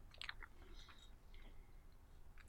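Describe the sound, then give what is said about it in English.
Wet chewing of a mouthful of soup, with soft smacking and small crunchy clicks repeating unevenly over a low background rumble, no talking. “This is taking me so long to chew.”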